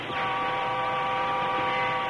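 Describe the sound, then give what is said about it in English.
A steam train engine's whistle, sounded by the engineer pulling the whistle cord in the cab, gives one long, steady, chord-like blast, loud, holding the same pitch throughout with no voices over it. “In the cab of the train engine, the engineer reached again for the whistle cord.”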